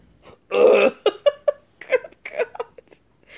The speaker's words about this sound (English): She's belching like Homer Simpson at one point. It's like, well, let me get this out before the ceremony.